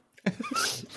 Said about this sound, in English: Welcome, just a huge cough.